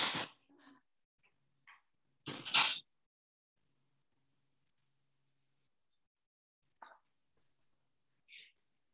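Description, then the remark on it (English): A door is opened to let in a cat that was banging at it: a few short, soft clunks and rattles separated by quiet pauses, low in level. “Let my cat in, who's banging at the door, but I can hear you.”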